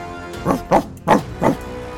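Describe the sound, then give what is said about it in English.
A dog runs up to the edge of a cliff and barks four times in quick, slightly uneven succession, each bark sharp and fairly loud, with nothing else but a faint background hum around them. “Old River runs up to the edge of the cliff here and just starts barking.”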